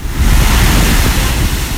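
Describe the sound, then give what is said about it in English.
Big waves of good size crash and roar steadily against the Lake Erie shore in northwestern Pennsylvania on a windy day, a loud, continuous wash of surf with a deep rumble underneath and some wind buffeting the microphone. No one speaks. “It was, and the waves were pretty good, so pretty good size.”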